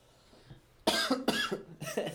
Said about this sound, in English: Sorry, I got a little bit of a cough.